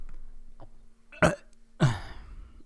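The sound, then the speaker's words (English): Two short, rough burp-like bursts, the second deeper and more drawn out, with a quiet background hum and no talking. “You know how it's like when people burp, like cartoons burp after they eat something?”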